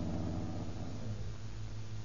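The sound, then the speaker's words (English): A car engine rumbles low and steady, a continuous throaty drone that eases slightly toward the end as the car slows to pull in. No one speaks. “Here's a good place to pull in.”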